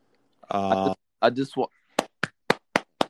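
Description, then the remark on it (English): A drawn-out vocal sound and a brief burst of talk give way to five sharp, evenly spaced hand claps in a steady rhythm, each crisp and fairly loud, clapping to welcome an interview guest. “We gotta clap it out.”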